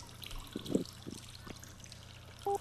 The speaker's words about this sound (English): It's the one with all the water falling out of it.